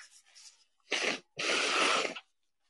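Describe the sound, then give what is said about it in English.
Someone with a runny nose blows their nose hard into a microphone: a faint breathy sniff, then two loud, harsh, hissing blasts, the second one longer and sustained before cutting off. “Yeah, blowing my nose on a microphone. That's absolutely disgusting.”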